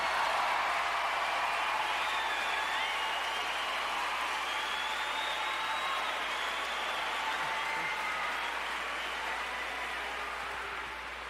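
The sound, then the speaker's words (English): Steady, sustained applause from a large stand-up comedy audience, given for a band, fills the whole stretch, a dense wash of clapping that holds strong before easing slightly toward the end, with no voices standing out. “Before I even get started, I want to say, how about big round of applause for …?”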